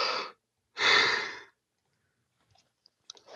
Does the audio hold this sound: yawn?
yes